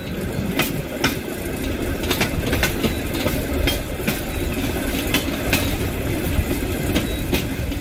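A foot-powered rail car rolls along the tracks with a steady low rumble, punctuated by sharp, irregular clacks every half second or so as the wheels pass rail joints. No voices.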